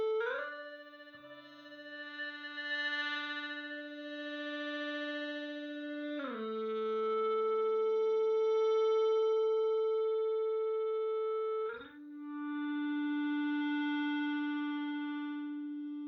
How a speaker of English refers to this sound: The instruments are sparse, just an acoustic guitar, a voice, and an electric guitar played with an ebow. The ebow acts as sort of a drone, and the eerie quality is supposed to reflect the haze of someone who is in a fragile state of mind.